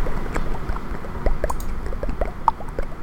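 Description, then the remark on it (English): Wet lip smacking after moistening the lips, with a rapid, irregular stream of small bubbly pops and clicks, moderately loud, with no talking. “I was smacking my lips after moistening them, and it made a popping sound, and it inspired me.”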